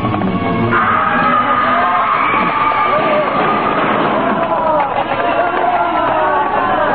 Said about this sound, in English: A screaming, hysterical mob sweeps through the streets, driven on by the lashing whips of the mounted police.